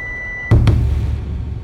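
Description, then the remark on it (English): A steady electronic car speed warning beep, which sounds whenever the car goes over 80 kilometers per hour, holds for about half a second, then cuts off into two quick thumps and the low rumble of the moving vehicle. No one speaks. “Every time we go over 80 kilometers per hour, the car beeps.”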